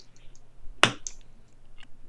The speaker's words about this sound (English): Who's still clapping? Why do we have clapping going on? Yeah, literally why?